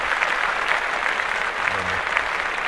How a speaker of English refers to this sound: Now, first of all, let's clap.